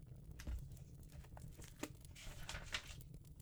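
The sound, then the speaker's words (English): A paper packet is torn open up close, with a run of crinkling, ripping bursts and sharp snaps over about three seconds, fairly quiet and with no voices. “Now, if Jim agrees, we'll open this packet up.”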